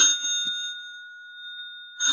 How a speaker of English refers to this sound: You'd better answer the phone. Answer it, comrade, right now.